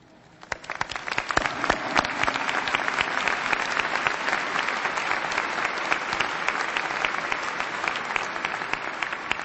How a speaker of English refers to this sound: I'm going to ask that we hold our applause until all the honors graduates are standing, and we'll recognize them all as one group.